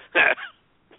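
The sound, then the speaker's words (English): A single loud, throaty belch into the microphone, lasting a moment and trailing off into a rougher tail, followed by near silence and a faint brief sound at the end. “Are you just belching into the microphone?”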